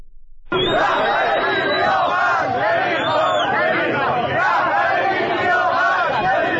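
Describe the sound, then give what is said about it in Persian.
A large crowd of protesters in another part of Tehran chants slogans together, against the leader and about the high price of the dollar: a loud, dense mass of shouting voices that cuts in abruptly after a brief silence and keeps going without a break. “در تهران، در بخش دیگری از تهران با این شعارها روبرو شدیم.”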